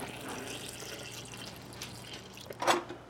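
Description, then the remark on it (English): A steady, soft stream of oat milk pours into a blender holding ice, bananas and peanut butter for a few seconds, with a brief splashy gurgle near the end. The pour is fairly quiet, and no one speaks. “I'm adding in some oat milk right now.”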